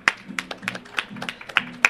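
A few hosts clap briefly to welcome a guest from Tupperware: about seven sharp, uneven claps over two seconds, moderately loud, with a faint low vocal murmur underneath.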